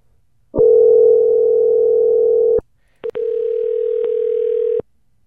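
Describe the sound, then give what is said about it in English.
A telephone ringback tone sounds twice, each a steady, loud electronic hum lasting about two seconds, separated by a short pause and a faint click, with no voices. “It's ringing.”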